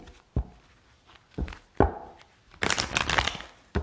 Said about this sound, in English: Shuffle my cards.